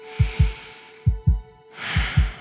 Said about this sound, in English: Yeah, and I can even feel my very own heartbeat. Ba-bum.